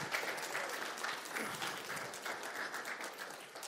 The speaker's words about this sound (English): I don't know. I mean, I might have clapped louder for the gym club boys, but I guess I'll let whatever.